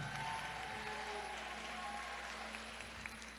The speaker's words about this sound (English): Can y'all do me a favor? Let's clap one more time for the video camera.